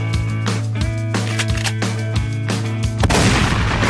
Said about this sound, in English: I was so excited about my new gunshots. I'm going to do this shotgun one more time.